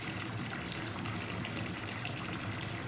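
A toilet being flushed again, with water gushing in a steady, loud rush that fills the whole moment, no voices over it.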